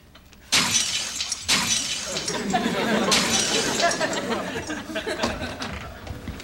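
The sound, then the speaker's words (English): Porcelain cat figurines from a collection smashing: three loud crashes spaced a second or two apart, each followed by a spray of tinkling, clattering shards that keep rattling between and after the breaks. “Smashed a porcelain cat collection.”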